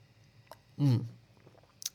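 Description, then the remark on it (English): A quick sip of water, heard as one short, fairly loud wet gulp in the middle, then a couple of faint mouth clicks. No one speaks. “A little sip of water there.”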